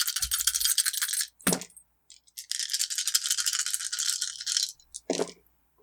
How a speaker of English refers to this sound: Listen to the sound of all those dice.